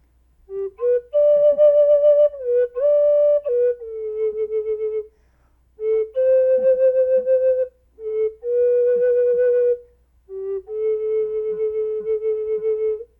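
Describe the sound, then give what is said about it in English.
A wooden flute plays a slow, wandering melody of sustained, breathy notes, rising and falling in short phrases separated by brief pauses, with no voices. “Well, as they talked about what it is that they wanted to do, they heard a strange sound, and a man came around the corner with birds flying all around his head, playing a magical stick.”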